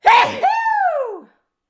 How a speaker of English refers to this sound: Oh, fuck, I'm going to sneeze.